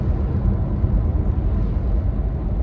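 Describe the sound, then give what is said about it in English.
Steady road rumble from inside a moving vehicle in traffic as the driver crosses another lane beside a milk truck, a dense low drone with no distinct pass-by standing out and no voices. “I gotta cross another lane here and not die by this milk truck.”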